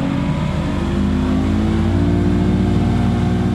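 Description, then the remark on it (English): A motorboat engine revs up loudly and steadily, its low droning roar building as the boat pulls away into the marshes of Louisiana, in Plaquemines Parish, with no one speaking. “Just to the south, I got on a boat for a look at the marshes of Louisiana. Hold on.”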